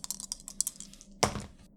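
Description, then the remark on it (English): Dice rattle in a quick series of light clicks, then clatter onto a hard surface in one louder, brief burst that fades out. Fairly quiet, with no talking. A set of new dice is rolled for an alertness roll. “Give me your alertness roll. Okay. Yeah. Use my new dice.”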